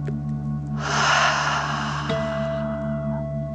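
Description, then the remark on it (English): A single deep breath, a noisy airy inhale through the nose flowing into a slower exhale through the mouth, heard over a steady low humming drone with no talking. “Breathe in through your nose and then out through your mouth. Pretending you are breathing fire.”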